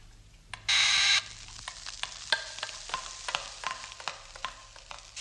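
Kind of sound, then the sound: food or drink, steak sizzling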